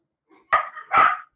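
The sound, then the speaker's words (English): An excited dog barks twice in quick succession, loud, with a short faint yip just before and nobody talking. “Please excuse my very excited dog.”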